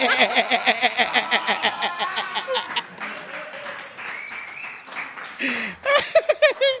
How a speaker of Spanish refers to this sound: Oigan, muchachos, mejor y con esa ovación, vámonos a la nota, ¿no?